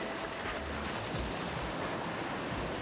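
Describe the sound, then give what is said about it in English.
Steady roar of ocean surf washing onto a beach, a broad continuous wash of breaking waves with low rumbling swells and a touch of wind, moderately loud and with no voices. “You're sitting in the warm sand under a tall palm tree, listening to the waves crash against the beach.”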